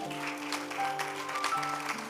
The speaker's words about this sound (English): If you are clapping, you can clap.